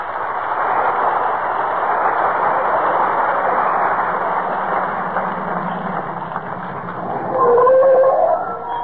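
A car engine rumbles steadily for several seconds as Fibber McGee and Molly drive up in front of 79 Wistful Vista, home from their vacation, then brakes squeal sharply in a loud, high, wavering screech near the end. No one speaks.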